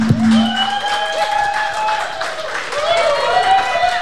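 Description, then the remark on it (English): A live studio audience at Club Garibaldi, during WMSC's Local Live radio show, claps steadily throughout, a dense patter of many hands, while sustained whoops and cheering voices rise and fall over the applause. “clap, clap, clap.”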